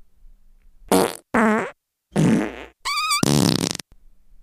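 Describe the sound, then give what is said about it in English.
A run of four loud, sputtering farts in a bathroom, separated by short silences, each buzzy with a wavering pitch, the last one stretched out longer and squealing higher. No talking. “No sooner than 30 seconds after he entered that bathroom, he crop dusted the entire...”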